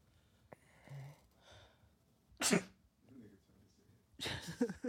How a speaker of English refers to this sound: Yeah. I sneezed and coughed at the same time.